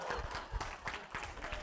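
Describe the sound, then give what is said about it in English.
An audience bursts into applause, a dense, steady patter of many hands clapping at once, fairly loud and continuous for under two seconds with no voices on top. “Now, it's very kind that you applauded, but don't do that.”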